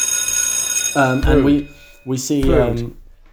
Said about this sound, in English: We cut to a bunch of students all coming into the cafeteria. The lunch bell rings and these students start coming in.